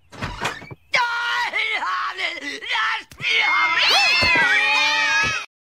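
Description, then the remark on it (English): Several cats meow loudly and insistently, their overlapping cries rising and falling in quick succession, some stretching into long wavering yowls. “People say she's crazy just because she has a few dozen cats.”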